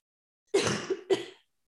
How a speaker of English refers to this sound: Sorry, I still have a cough.